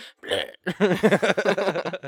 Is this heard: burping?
yes